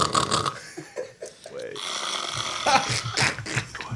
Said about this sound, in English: But, and this fucking Muppet decides to pull out the audio of me snoring. And just goes, hey, everyone, look at this. It's fucking great, hey.